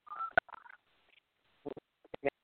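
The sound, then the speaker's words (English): A telephone keypad dialing sequence as someone calls back in: a short run of electronic beeps at an uneven pace, with a few clicks between them, fairly quiet, with no one talking. “We can call back in again.”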